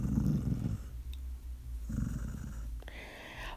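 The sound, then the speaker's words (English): A dog that has just been woken up grumbles low, a rumbling growl-like murmur that rises and falls for a few seconds, ending in a brief snorting exhale. “Hey, didn't mean to wake you, pup.”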